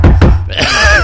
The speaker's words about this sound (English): I need to, like, knock on the table before I sneeze. Yeah. That way everyone knows.